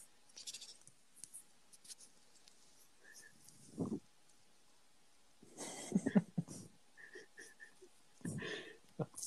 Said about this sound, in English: Now we're just going to get his breathing out.